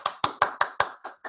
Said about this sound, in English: Ooh, got some clapping here.